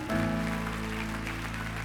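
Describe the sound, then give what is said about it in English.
An audience claps steadily for Jesus, a dense wash of many hands over a sustained, droning musical chord that holds throughout, moderately loud and continuous. “Everybody clap your hands for Jesus.”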